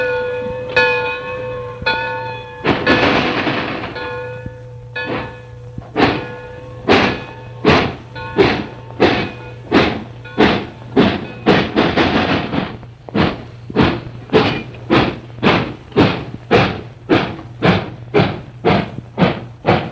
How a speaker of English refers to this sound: There goes the hooter that signals the start of Mood Train number 5